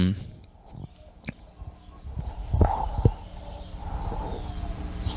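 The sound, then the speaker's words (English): A neighbor's chickens cluck in a few short, mid-pitched bursts around the middle, mixed with a couple of sharp knocks over a low, steady background rumble. “Did you hear those chickens?”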